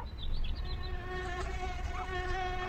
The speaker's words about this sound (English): The mosquitoes are just all over the backyard.